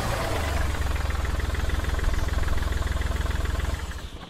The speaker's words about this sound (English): Down below, a car pulled up.